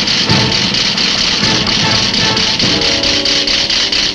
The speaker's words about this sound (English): The alarm starts its raspy alarm again. I should say the bomb starts its raspy alarm again.